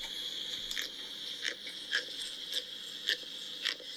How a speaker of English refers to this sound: Yeah, so that's the sound a pufferfish makes. It kind of makes me think of like the turtles having sex, but like...